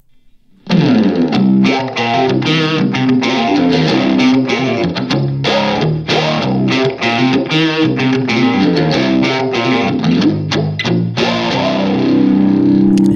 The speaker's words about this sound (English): Nice. Spring reverb.